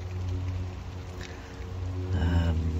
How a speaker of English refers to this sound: Well, the rain has arrived, finally.